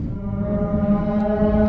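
A low, sustained whale call drones steadily for a couple of seconds, rich and buzzy with layered overtones, loud with no talking over it.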